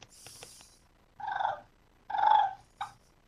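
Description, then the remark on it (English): Loud, rolling turkey fighting purrs made by a person on a mouth call: two harsh, fluttering bursts about half a second each, then a short clipped note, with no talking. “you learn how to do the fighting purr by doing it loud and just getting your tongue roll”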